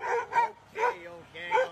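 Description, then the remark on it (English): A Doberman barks and yips in four quick vocal bursts with short pauses between them, its voice tonal and whiny, almost like it's complaining, scolding a person who took too long at the stop. “Dobermans are the sweetest dogs, too.”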